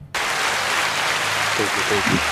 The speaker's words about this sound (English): So speaking of sayonara, Seb Vettel, final race. You like that segue? Yep. Final race. Give him a round of applause for that, Seb.